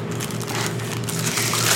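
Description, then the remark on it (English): A burrito's paper wrapper being crinkled, a steady rustling crackle that runs for a couple of seconds without a break, with no talking over it. “Can I have your cheese paper?”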